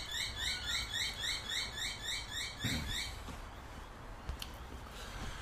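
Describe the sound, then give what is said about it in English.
Rapid, repetitive bird chirps ring out in a steady rhythmic series for about three seconds, clear over a soft outdoor hum, then fade to quiet ambience with a faint click. “Listen to those birds.”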